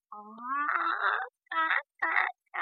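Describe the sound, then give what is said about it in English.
A voice imitates a hen, starting with a drawn-out rising squawk and then three short, raspy clucks in quick succession, fairly loud. “Well, baby dumpling, that does sound something like a hen.”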